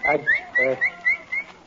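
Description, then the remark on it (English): Someone whistles a quick series of short, rising notes, several chirpy bursts in a row, like calling a dog over, clear with a bit of voice-like sound mixed in. “What week you've been whistling like you was calling a dog?”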